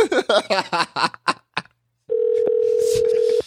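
An outgoing telephone call ringing out: a short run of choppy sounds, a brief silence, then a steady, unbroken mid-pitched ring tone that holds loudly until the end.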